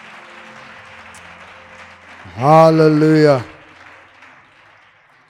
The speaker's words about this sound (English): Can we give a powerful clap offering to the Lord?